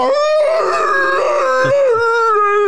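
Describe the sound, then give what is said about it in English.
A man lets out a single loud, sustained howl lasting a few seconds, his voice wavering and straining with a rough, groaning edge, alone, as he climaxes during sex. “I spray my fuck chutney into this room and let out a howl as I do so.”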